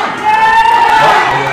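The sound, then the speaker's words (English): A loud, excited crowd cheers and shouts continuously, a dense wash of many voices with a few high-pitched whoops rising above the roar. “Just seeing people really go for it, and the crowd getting so excited.”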